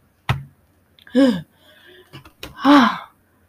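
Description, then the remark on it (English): Two short, voiced yawns, each a breathy rising-and-falling moan, separated by a brief pause with a faint click and soft breath noise, no talking. “Oh my god, he's yawning again.”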